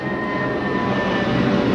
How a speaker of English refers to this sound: This plane is coming right at us. I would give it a second. I might dive bomb us right now.